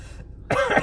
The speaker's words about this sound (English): Why do I cough? Why are these fuckers coughing?